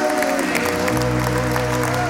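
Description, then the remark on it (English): A large audience claps steadily in praise at a church service, a dense, continuous wash of applause, while sustained keyboard or organ chords swell underneath, at a fairly loud, even level. “Come on now, give my hand clap of praise in this house.”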